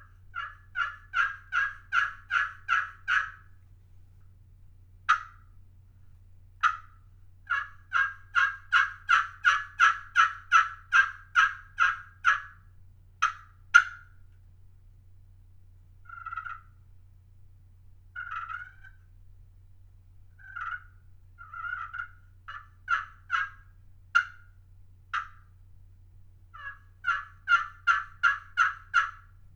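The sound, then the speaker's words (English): A slate-over-glass turkey pot call in a dogwood pot from Cubby's Custom Turkey Calls, played with a waterproof striker: runs of sharp, evenly spaced yelps in quick rhythmic series, broken by scattered softer clucks and purrs, over a low steady hum. “So I'm going to play this slate over glass in a dogwood pot with this waterproof striker.”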